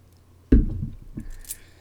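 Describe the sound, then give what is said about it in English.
A sudden burst of Gruet champagne poured into a glass, followed by a softer second splash and a faint, steady high fizz of bubbles crackling afterward, with no talking. “I hope you can hear the bubbles.”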